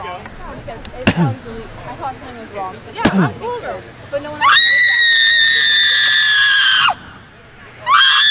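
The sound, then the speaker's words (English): A woman on the Western Washington campus, upset about a Trump sign, lets out a long, piercing, high-pitched scream lasting a few seconds, loud, after a stretch of indistinct crowd chatter; another scream starts just as it ends. “I don't think it's appropriate to have her screeching, though.”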